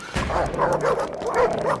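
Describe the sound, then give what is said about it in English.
A pack of hounds barks and yips excitedly, with quick overlapping barks coming in a rapid, uneven burst, fairly loud, with no one talking. “God bless the United States of America and release the hounds.”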